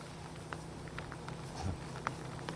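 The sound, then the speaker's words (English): Steady, intensifying rain from Hurricane Ian falls outdoors in Tampa as a dense, hissing wash, with scattered sharper drips and taps breaking through and a low rumble underneath. Fairly quiet and continuous, with no voices. “over the last half hour or so, the rain has really started to intensify.”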